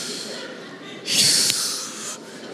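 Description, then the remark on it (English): A lion's heavy breathing with a forceful snort near the middle, a breathy, noisy rush, on its own with no talking. “Man, when you come next to that beast, that's when you understand why they call it the king. That thing. Even just the, even when it's breathing.”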